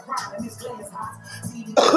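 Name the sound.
coughing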